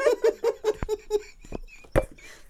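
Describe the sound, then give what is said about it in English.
A sharp, loud sneeze bursts out after a run of short, rhythmic, voiced huffs and a few quick clicks, then trails off into breathy quiet. “Bless you.”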